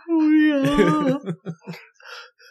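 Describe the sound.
A human voice imitates a dying cat: one long, strained, wavering wail held for about a second, then breaking into a few short, choppy yelps before trailing off.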